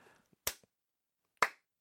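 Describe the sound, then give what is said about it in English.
Two sharp hand claps about a second apart, each a bright, crisp smack that fades quickly, with near silence between them in a slow, deliberate rhythm. “You get a slow clap for that.”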